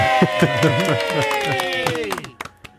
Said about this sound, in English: Applause for me.